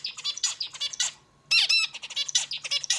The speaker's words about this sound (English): But male zebra finches with their orangey accent feathers and little white spots pop with color. And they sing.